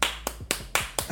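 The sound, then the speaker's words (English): Four sharp, crisp claps in a quick, even rhythm, fairly loud over a low, steady background hum, from a small audience clapping briefly for a co-host being introduced. “I got claps this time.”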